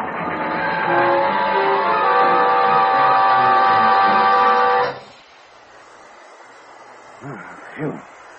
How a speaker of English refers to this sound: Hey, hey, what the... Something's wrong. The train's hitting the rails. What happened? Wait. The brakes are on already. Look out. The caboose is slipping.